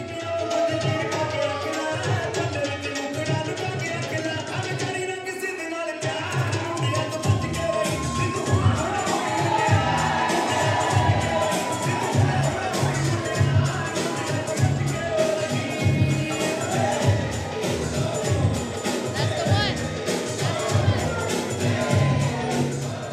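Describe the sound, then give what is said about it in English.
A crowd in a room cheers and shouts loudly over music from a DJ set; after a brief cut in the bass, a heavy, thumping dance beat drops in and the roaring crowd keeps cheering over the steady pulse. “Okay, so DOMii, when I was in the crowd and that beat hit, and you can even hear it on the recording too, I mean, the energy just blew up in the room.”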